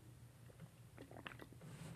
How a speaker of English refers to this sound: I'm just going to take a sip of water.